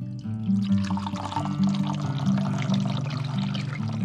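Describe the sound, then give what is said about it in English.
Tea pours steadily into cups for a group, a continuous splashing gurgle lasting a few seconds with a low resonant hum underneath and no voices. “Tarsha poured more tea for the group”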